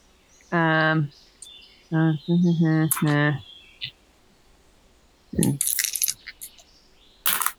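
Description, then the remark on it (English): Voices speak briefly during a tabletop game, then five dice clatter across a hard table in a short rattling burst, followed by one more sharp clack a moment later. “You'll roll five dice, basically.”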